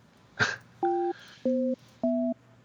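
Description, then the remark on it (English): A sharp click, then three evenly spaced Skype call tones as a phone number is dialed, each a short steady two-note beep at slightly different pitches, clear with no one speaking. “That's me calling a phone number.”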